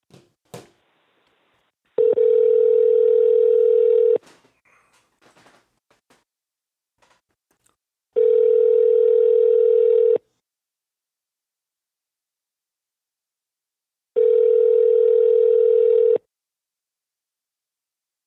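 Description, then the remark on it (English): An outgoing phone call ringing: three long, steady ringback tones, each about two seconds with four-second gaps, preceded by a few soft clicks and taps, with no voices. “All right, man, we're going to go ahead and get my man's Black on the phone, and then we're going to transition over to the National Basketball Association.”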